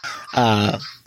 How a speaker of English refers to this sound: So his first time on the show, and the dogs are already going off. Never fails, man.